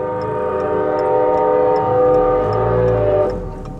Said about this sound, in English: We idle over a light rail track, just as a train is arriving.